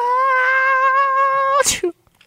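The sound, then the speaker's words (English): A voice mimics Christina Aguilera's sneeze: a long, rising, tonal 'ah' held for over a second, then a sharp, breathy burst and a brief trailing sound, followed by quiet. “And she sneezed back.”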